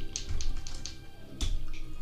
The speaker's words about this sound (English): And I roll a 3 on the dice. So no. Never mind.